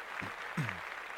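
Steady, dense clapping runs throughout at a moderate level, and two short low vocal sounds with falling pitch cut through the applause.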